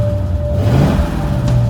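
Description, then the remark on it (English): A rusted-out 1964 four-door Cadillac in a parking lot is started after the gas pedal is pumped; its engine rumbles loudly and steadily, its low, throaty drone swelling briefly as it revs, with a faint steady whine running on top. No voices are heard. “Put the keys in the ignition, pumped the gas pedal a few times, and started up my 1964 rusted out, four-door Cadillac.”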